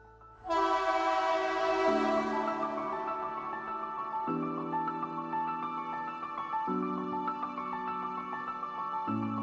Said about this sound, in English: The train is exiting Principle Station. Next stop, next episode, Purpose Station.